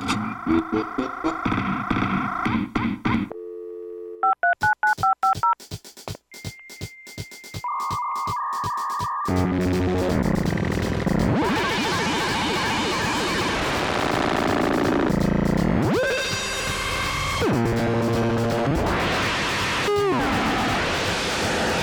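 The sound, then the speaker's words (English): A computer's dial-up modem dials a quick string of touch tones to connect to the internet, then breaks into its loud screeching connection handshake: warbling beeps and harsh hissing static that keep going for over ten seconds, with no talking. “Start the computer and the modem to hear the show that I'll be downloading.”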